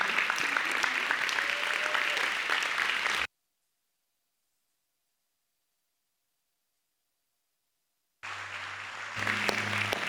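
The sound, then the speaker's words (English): An audience at Storyside claps and cheers to welcome people introduced as the church's gifts, in a dense, steady burst that cuts off abruptly, followed by several seconds of silence before the applause resumes just as loudly, with a low hum underneath. “You can cheer for them, you can wave at them, but would you welcome them today?”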